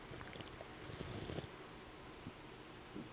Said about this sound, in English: I am drinking a pink lemonade Spindrift. These are my new favorite seltzers. I'm going to take a sip real quick.